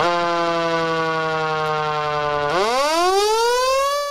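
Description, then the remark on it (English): A loud Federal Signal Q mechanical siren wails with a rich, buzzy tone, its pitch sagging slowly before swooping back up in a rising wind-up. No one speaks. “You know it, you love it, the cue siren.”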